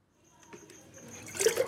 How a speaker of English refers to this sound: So right now I'm just getting some water to wash my hands, and it's actually in a bunch of pails. I'm not getting it from the tap. I'm getting it from, like, with a bucket outside because we had to fill up a bunch of pails of water today